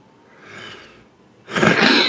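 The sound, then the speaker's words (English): A quick intake of breath, then one loud, explosive burst that is half throat-clear, half cough, abrupt and harsh enough to pass for a sneeze. No one speaks. “That was half clear my throat, half cough.”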